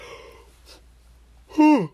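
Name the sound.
a person yawning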